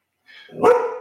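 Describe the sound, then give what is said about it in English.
A single fairly loud bark from Wesley the dog, with a brief whiny lead-in before the main woof that trails off over about a second. “There's the dog.”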